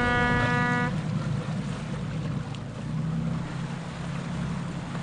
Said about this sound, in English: That's one of our boats leaving. The other two boats are docked beside that.